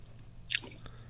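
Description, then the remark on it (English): A single sharp, crisp crunch of someone biting into a hard oat biscuit, followed by a faint click and quiet chewing over a low background hum. “It's hard. Hard and crunchy?”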